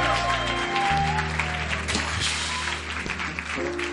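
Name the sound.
audience clapping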